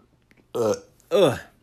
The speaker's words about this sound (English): There's a nice burp there.